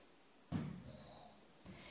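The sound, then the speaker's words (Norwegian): A chair is lifted and set down with a sharp wooden thud that rumbles briefly, followed about a second later by a softer knock as it settles. No one speaks. “du kan hjelpe meg med å ta opp den stolen der.”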